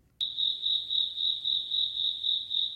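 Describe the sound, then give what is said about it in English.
A single cricket chirps steadily indoors in a laundry room, a high, pulsing trill that repeats in an even rhythm after a brief silence at the start, with no voices. “And just so all the listeners know, that cricket is from my laundry room.”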